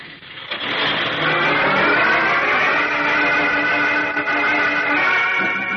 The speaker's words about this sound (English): Eyes wide and heart pounding, young Chuck Riggs watches the truck carrying his uncle and the other hooded terrorists roar out of the dark driveway.